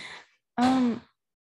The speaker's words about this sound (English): Sorry, that was my door. If you guys can hear that.